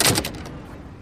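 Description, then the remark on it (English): A bar door is held open for a woman and swings shut, a quick cluster of knocks and rattling clunks at the start that fades into a low, lingering rumble. No one speaks. “Holding the door for the lady.”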